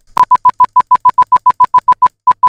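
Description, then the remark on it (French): A rapid series of about fifteen short electronic beeps at one steady pitch, a Morse code message, evenly spaced with a brief pause near the end, loud and clear with no voices. “C'était du morse.”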